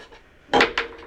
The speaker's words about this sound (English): Yeah, go ahead and roll the die.